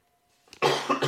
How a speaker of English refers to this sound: Sorry, I had to cough and I could have just pushed the mute button on my mic, but I didn't.